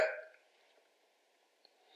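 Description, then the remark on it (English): A single short, husky cough bursts out at the very start and fades quickly, followed by near silence with a faint click and a soft rise of breathy noise at the end. “That wasn't a corona cough.”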